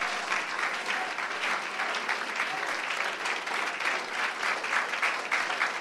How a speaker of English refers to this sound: Clap your hands and pray. It is going right now. Clap your hands and pray.